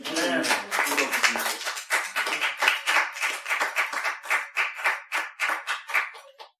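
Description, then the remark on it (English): A crowd claps for Jesus, at first a dense burst of applause mixed with voices, then settling into steady, rapid rhythmic clapping that continues to the end. “Everyone give clap to Jesus.”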